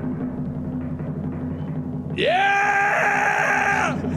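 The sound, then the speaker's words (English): People yell excitedly at an Employee of the Month winner announcement: after a couple of seconds of low background rumble, a loud, sustained excited yell bursts out and holds for nearly two seconds before cutting off. “Stop yelling.”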